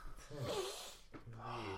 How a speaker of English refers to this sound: Well, that was a lot of sniffing on this.